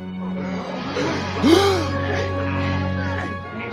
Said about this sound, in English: I like the gasps, especially.